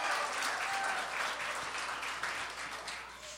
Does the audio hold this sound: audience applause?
yes